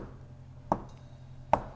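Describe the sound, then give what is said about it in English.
The city watch gives two firm, sharp knocks on the door of the Gathala Mansion in Waterdeep during a gala event. The knocks are spaced slightly under a second apart and ring out over a low, steady background hum with no one speaking. “When suddenly there is a cold but firm knock at the door.”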